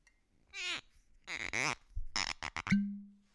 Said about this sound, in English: See if you can get a good cork squeak.